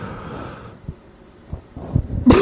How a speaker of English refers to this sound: I was just coughing for fun.